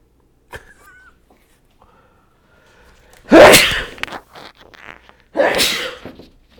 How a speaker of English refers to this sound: It'd be funny if that was just the end for me. You just hear me sneeze and I collapse onto the ground.